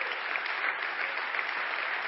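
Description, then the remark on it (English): Steady, dense applause from an audience for veterans on Veterans Day, many hands clapping at once in a continuous bright wash that holds a fairly even loudness throughout, with no voices standing out. “I know we did a video, but if you guys would let's give a round of applause to our veterans.”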